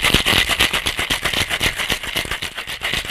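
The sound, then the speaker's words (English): Ice cubes rattle hard inside a cocktail shaker as a cocktail is shaken before being strained into cocktail glasses, in a fast, steady rhythm, a loud clattering rattle of rapid metallic knocks that continues throughout with no talking. “Pour into a cocktail shaker with ice cubes. Shake well and strain into a chilled cocktail glass.”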